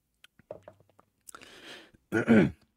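A drink is sipped: a few wet mouth clicks, then a breathy slurp, followed by a loud, harsh throaty burst as the swallow goes down the wrong pipe.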